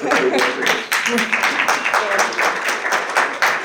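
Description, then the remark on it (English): Audience applause as panelists are introduced at a panel, a steady patter of many hands clapping for several seconds, fairly loud, with voices talking and calling out underneath. “I got applause.”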